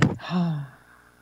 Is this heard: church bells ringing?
no